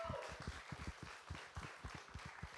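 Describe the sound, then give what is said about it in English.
Audience applause at a live music show for the performers: a dense, steady wash of many hands clapping at once, with a few heavier claps punching through, sustained at an even level for the whole stretch. “By the way, a round of applause again for Scott and Adam for doing a great show.”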